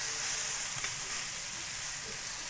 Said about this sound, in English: Get all that chicken out of there. I just turned it over. It needs the other side. Nice and brown. Let's get it out of there. No, this side's not brown.